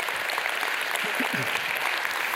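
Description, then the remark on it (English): A church crowd applauds the elders steadily, a dense, even wash of many hands clapping at once with no gaps, with a faint murmur of voices briefly underneath. “You should be clapping for no other reason than that's a sweet beard.”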